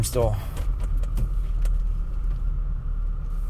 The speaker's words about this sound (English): I'm still out. I still got the car running.